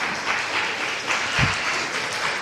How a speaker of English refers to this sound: I'm glad there's at least three of you clapping. It makes me feel very encouraged.